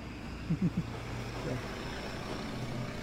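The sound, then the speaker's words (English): A truck rumbles steadily behind the speaker, its low engine drone filling the background with traffic noise; a few brief vocal sounds break through early on. “there's a truck behind me.”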